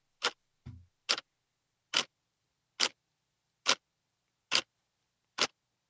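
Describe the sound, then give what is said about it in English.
A clock ticks steadily as a segment jingle, with about seven crisp, evenly spaced ticks roughly a second apart and a soft low thump near the start. Clear, with nothing else in the background. “So there's my little jingle for our show.”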